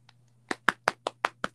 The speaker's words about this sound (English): Hey, clap, clap.